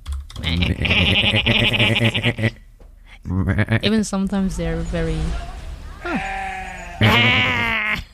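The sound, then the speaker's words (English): A person imitates a sheep with several loud, wavering bleats, with brief bits of speech and laughter between the calls. “You know in Maastricht when you're biking and all of a sudden there's sheep?”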